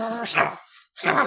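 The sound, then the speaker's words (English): A person makes a fairly loud imitation of the Pokémon Snubbull growling at a creepy janitor, two short rough voiced bursts separated by a brief pause. “But as it comes out, Snubbull does pick up on Kalandi's vibe and immediately start growling at this creepy janitor.”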